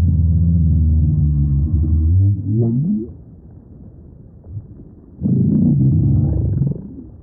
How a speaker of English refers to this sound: We leave you this week with voices of the northern right whale in Cape Cod Bay. These sounds of the northern right whales come to us courtesy of the Bioacoustics Research Project at the Cornell Lab of Ornithology.